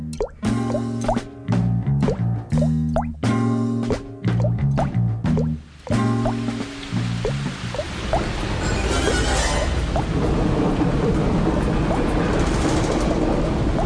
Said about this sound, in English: Thunder boomed. Lightning flashed. A new leak splished. Another splashed. Drip, drop, plip, plop. Down came the rain. It would not stop.